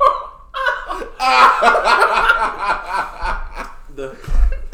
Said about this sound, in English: That's not a corona cough. I'm just coughing because it's funny as fuck.